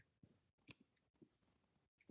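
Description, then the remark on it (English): A few faint, scattered clicks like small dice tapping a hard surface, then a sudden louder clatter as dice are spilled right at the end. No one speaks. “I spilled some dice.”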